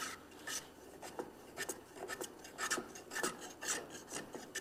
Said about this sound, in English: Again, you know, you should be constantly checking for square, in this plane now. Now I'm pulling the plane toward me because I got run out any other way.